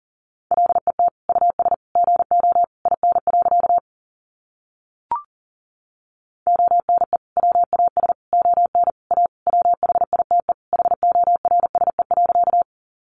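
Rapid Morse code beeps at about 40 words per minute, sending sentences made from the top 300 words: a steady, mid-pitched tone keyed in quick dots and dashes, broken by a pause with a single click, then continuing.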